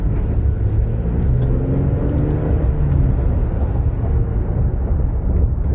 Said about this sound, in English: Reasonably quiet. Love this 3.8 liter V6.